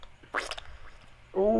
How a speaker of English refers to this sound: And then I have the shart.